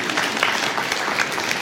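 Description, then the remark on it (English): An audience gives a golf clap for a couple of seconds, a dense, even patter of many hands with no clear peaks, moderately loud and without any voices over it. “You were going to give a golf clap for that.”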